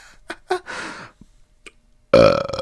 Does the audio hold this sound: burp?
yes